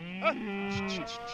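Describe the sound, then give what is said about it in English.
A cow lets out a long, low moo lasting about a second, clear, with a faint buzzing of insects in the background, on a cattle ranch of about 100,000 acres in Pawhuska, Oklahoma, near Tulsa. “His family's been herding cattle for four generations here in Pawhuska, Oklahoma, near Tulsa.”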